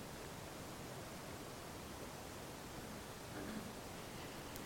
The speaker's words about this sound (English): Beautiful sound of the rain. It always sounds worse than it is.